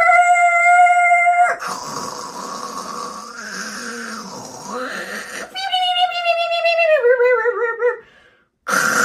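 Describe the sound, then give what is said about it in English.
A dial-up modem connects over a phone line: a steady electronic tone, then a rush of hissing static with warbling swoops, then stepped, falling tones before it cuts off abruptly. No one speaks over it. “If you don't know that sound, or you're too young to know what dial-up is... It's a modem connecting.”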